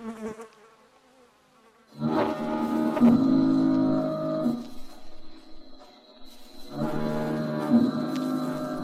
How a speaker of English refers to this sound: There's nothing so dismal as a foghorn.